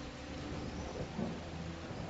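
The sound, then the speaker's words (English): Steady, dense rain pours down on burning torches without a break, a continuous hiss over a low rumbling undertone, fairly loud, with no voices present. “Wow, it's raining on their torches.”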